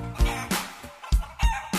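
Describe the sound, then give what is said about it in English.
Fifteen chickens cluck in a quick, uneven series of about five short, throaty bursts, loud, with no talking over them. “20 sheep, 19 cows, 18 cats meow meow, 17 goats, 16 ducks, 15 chickens cluck cluck cluck.”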